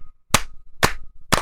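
Three sharp hand claps land at an even, steady pace about half a second apart, each a bright crisp smack that dies away quickly, with no voices in between.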